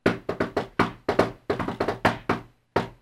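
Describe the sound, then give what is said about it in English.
A rapid series of sharp coded knocks on a wooden door in an irregular, patterned rhythm: clustered pairs and triplets with brief pauses, fairly loud, with no voices. “They're knocking in that special way again.”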